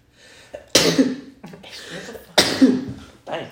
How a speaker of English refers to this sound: Damn. Bless you, sir. Bless you. Please stop sneezing.